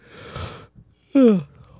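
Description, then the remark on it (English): A person yawns: a breathy inhale followed by a loud, voiced, falling groan that trails off into quiet breathing. “I'm yawning.”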